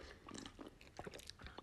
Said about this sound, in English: It's just a little dry. Let me take a sip of tea. I encourage you to do the same.